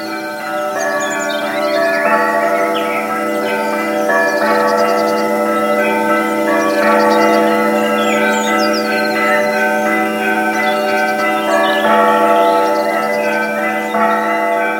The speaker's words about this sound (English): Sitting on the balcony of the Asceti on Easter morning, you can hear the bells of a larger monastery in the distance.